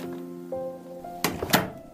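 A house's front door opens: a faint, steady tonal whine, then two solid clunks about a third of a second apart, like a latch releasing and the door swinging free. No one speaks.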